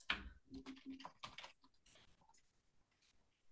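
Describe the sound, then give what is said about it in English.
Rapid clacking of someone typing on a keyboard, a quick flurry of loud keystrokes that trails off into softer, scattered taps. “Yeah, you like those typing skills.”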